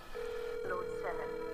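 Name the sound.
phone ringing on speakerphone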